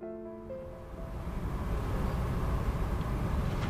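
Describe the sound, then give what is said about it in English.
A steady low rumble of a passenger train heading out of Toronto toward Windsor, Canada, with a faint tonal hum at the start giving way to constant rattling noise. No one speaks. “I'm on a train heading out of Toronto with artist and activist Camille Turner.”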